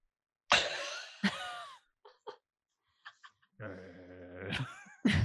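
A dog growls, a low rumbling snarl lasting about a second, set among a few sharp huffing bursts and quiet snuffling noises, with no talking.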